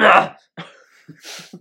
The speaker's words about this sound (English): It's clearing my throat.